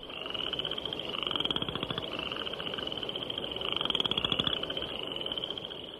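A dense chorus of spring peepers and western chorus frogs calls continuously, high piping peeps layered over rapid, raspy trilling croaks, steady and fairly loud with no voices present.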